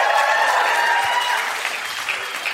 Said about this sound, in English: That was an interesting one because three dead iguanas got less claps but more woos. Yeah. That's the woo to clap ratio.